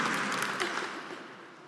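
An audience claps together in a dense, steady patter of many hands, the applause gradually thinning and softening toward the end, with no one speaking over it.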